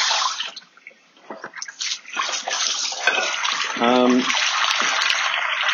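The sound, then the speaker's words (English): Water is poured steadily into the bowl of a dog named Wolf, a continuous splashing gush, with a rising gurgling tone partway through as the bowl fills. “There you go, Wolf, so change your water, because Ernie's been putting cat food in it.”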